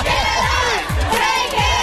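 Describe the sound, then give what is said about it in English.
A dense crowd at the Grove roars and shouts continuously for William Levy, many voices overlapping in loud, excited cheering with rising whoops throughout, sustained for the whole moment, wanting him to strip down. “Live at the Grove, Mario's Got Dancing's William Levy, and the crowd wants a strip down.”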